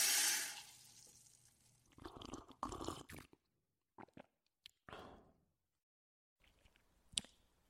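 A short rush of hissing water from a sink tap as a glass is filled, fading quickly, followed by splashy, sloshing bursts and a few sharp clicks and knocks with brief silences between them.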